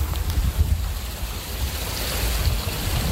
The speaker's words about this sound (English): It's like a mountain stream in the middle of St. Louis.